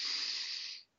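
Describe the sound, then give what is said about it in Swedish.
A steady, airy inhale during a breathing exercise of breathing in for 4 seconds, holding 7 and breathing out 8, a smooth hissing rush of breath that holds for nearly a second before fading out, with no talking. “En jättebra andning som gör varje dag, det är att man andas in 4 sekunder.”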